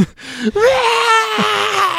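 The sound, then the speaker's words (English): A voice imitates the anguished scream of a woman giving birth in a film scene as fireworks go off: a short cry breaks into a long, strained, high wail that wavers and rises, then drops back into a lower groan. “So they set off these fireworks as she's giving birth, and she just lets out this like horrendous scream as the fireworks are going off. So you get do the scream.”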